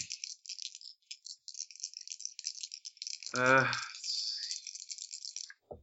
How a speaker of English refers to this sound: Roll some dice.